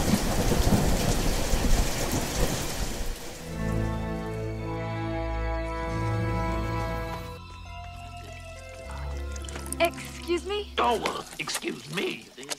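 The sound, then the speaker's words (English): Steady rain with a low rumble of thunder in a park fills the first few seconds, then gives way to sustained musical tones from a trailer for the 1986 film Labyrinth, and a voice speaks near the end. “So let's get out of the park, let's get out of the rain, let's get into some cover, let's play you guys a trailer, and I will see you guys soon.”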